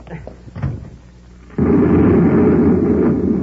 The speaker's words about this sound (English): We're going back to the control room so you can stop that explosion. Can't be stopped now. It's too late.